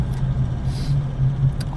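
A steady low truck engine drone with a constant hum as the truck drives along a road at 5:30 in the morning, heard from inside the cab with faint rattles and a brief higher jingle near the end.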